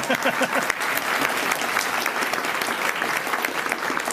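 A crowd applauds steadily for about four seconds, dense clapping from many hands at a constant, fairly loud level, with a few faint voices mixed in near the start.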